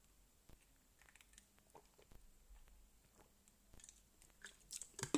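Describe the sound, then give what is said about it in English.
Someone taking a drink of water: soft, irregular clicks and wet mouth sounds, quiet at first and growing louder and busier toward the end. No one speaks. “I'm going to take a drink of water because my throat is very dry.”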